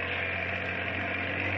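A steady, loud mechanical drone of fireboat pumps running, with a low engine hum and even rumble that holds constant throughout, no voices.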